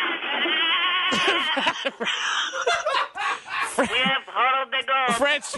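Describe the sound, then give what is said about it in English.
A caller's goat bleats repeatedly through a tinny, narrow telephone line, live on air on The Rick and Bubba Show, the wavering cries coming in quick, uneven bursts. “You have the goat to be heard.”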